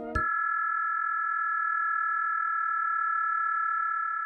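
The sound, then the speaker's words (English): A brief click, then a steady, unbroken ultrasonic data-transmission tone, data sent over sound at around 18,000 to 20,000 hertz, holding one mid-high pitch for about four seconds, moderately loud, with no voices. “Just on the edge of human hearing, at around 18,000 to 20,000 hertz, data is being transmitted over sound. It's called ultrasonic communication, even though it might be audible to a child or someone with excellent hearing.”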